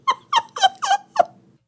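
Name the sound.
dog whimpering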